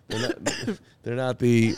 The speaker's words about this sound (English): What are you laughing at? I'm not laughing. I'm coughing. I swallowed my drink the wrong way.